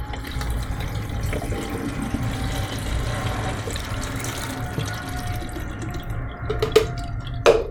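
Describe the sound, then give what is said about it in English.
A steady stream of PMK film developer pours into a Paterson developing tank for several seconds, continuous, ending with a couple of small knocks or clinks as the pour stops. “Okay, and like with all developers, for the most part, you pour it and then you agitate it for about 30 seconds.”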